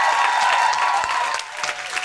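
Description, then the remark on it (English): A comedy club audience at the Punchline Philly applauds steadily and loudly as a thank-you cheer, a dense wash of clapping that holds for about two seconds with a faint cheer or whistle running through it, dipping briefly before swelling again. “Can I just have a big, big thank you and cheer?”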